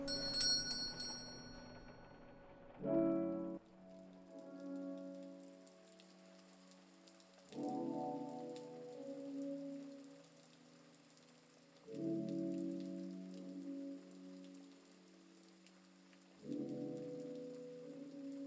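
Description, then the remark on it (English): Light rain, slowed to a sprinkle, patters steadily on surfaces outside a sushi bar, a soft continuous hiss, while deep, resonant chime tones ring out roughly every four to five seconds and slowly fade. No voices. “As you step outside and open your umbrella, you notice the rain has slowed to a light sprinkle now.”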